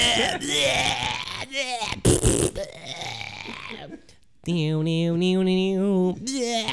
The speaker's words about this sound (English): That was actually a solid burp